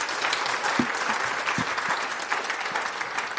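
An audience applauds steadily, a dense wash of many hands clapping at an even level for a few seconds, with no voices standing out.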